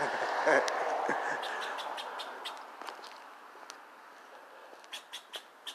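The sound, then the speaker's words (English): A squirrel barks in short, sharp, high-pitched chirps repeated at uneven intervals, ending in a quick run of four louder calls over a steady background hiss. “Squirrel barking at me.”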